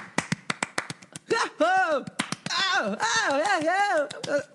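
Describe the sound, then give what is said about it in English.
One person claps in quick, irregular bursts to mimic applause, then adds loud, swooping vocal whoops and cheers over continued scattered claps. “I can simulate an applause. Like for more than one person, though.”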